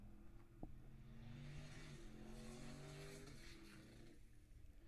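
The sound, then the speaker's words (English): A V8-swapped 240Z race car engine runs with a deep, steady burbling rumble that swells slightly in pitch partway through, loud and continuous with no talking. “That 240Z with the giant V8, it sounds like.”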